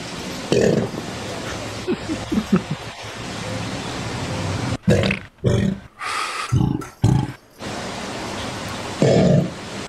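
An alligator bellowing in a series of deep, rumbling, burp-like grunts, several short bursts with pauses between, over a steady hissing background noise.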